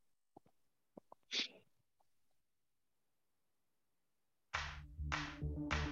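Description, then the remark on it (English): A single sharp sneeze bursts out after a few quick catches of breath, then quiet, before loud music with strong rhythmic hits abruptly starts. “God bless you, and thank you for today.”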